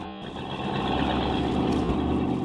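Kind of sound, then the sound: vehicle, car engine driving off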